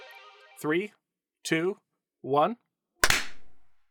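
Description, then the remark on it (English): After a spoken countdown of three, two, one, one loud, sharp hand clap cracks out alone and trails off in a brief ringing decay. “Okay, let's do a clap.”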